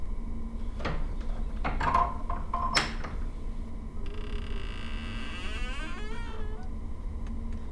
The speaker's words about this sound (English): Jeez, where'd they get that door? A haunted house? Just what we needed. More atmosphere.